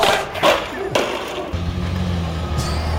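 A rear bumper is ripped off a Toyota Tacoma pickup truck by another Tacoma: two sharp, loud crunching metal bangs in quick succession, then a steady low engine rumble that carries on.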